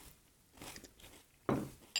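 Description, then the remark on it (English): Crunching of frosted flakes cereal being chewed, a few soft bites building to a sharp, loud crunch near the end, with no talking. “Now I will say, you know, one of the drawbacks of the flake, well, drawback or not, I guess for you to decide, is because it's a thin flake, it does lose its crunch fairly quickly.”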